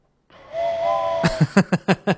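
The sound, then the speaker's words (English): A voice imitates a morose train whistle with a sustained, wavering whistle-like tone, then breaks into about six rhythmic, breathy shushing bursts, each a short loud hiss of air, like an imitated train chugging. “That's a shh.”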